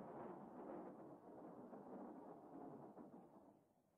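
A deep, continuous storm rumble rolls on steadily like thunder, dense and low, then eases and fades slightly near the end. No voices are heard.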